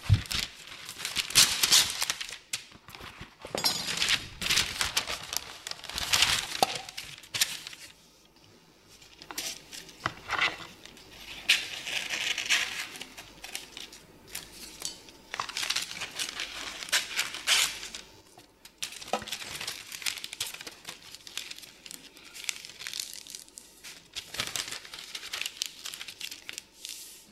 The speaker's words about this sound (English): And then you measure out baking paper just enough to cover the base and all four sides. And you're just going to put it in and make sure it sticks, which it will stick because of the oil.